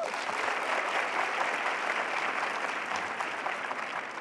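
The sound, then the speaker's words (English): An audience applauds to show how many have seen the film Chariots of Fire, a dense wash of many hands clapping at an even level for about four seconds, with no talking over it. “By a round of applause, how many people here have seen Chariots of Fire?”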